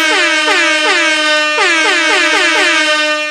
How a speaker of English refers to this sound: Very uncomfortable. I hate this new fucking air horn, yo.